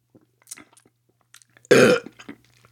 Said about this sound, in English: I filled the pint glass up and then drank a bit and then poured a bit more in, so I thought I'd drunk 1.25 glasses, but no, I've had one pint and I've had about 2 sips out of the second pint, and I'm about to have a third sip. Here we go.